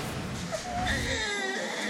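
A newborn baby cries in a thin, wavering wail, steady, with rising and falling pitch over a faint background hum. It is a newborn in Ukraine during the Russian attack, where women are giving birth in hospital basements and bomb shelters.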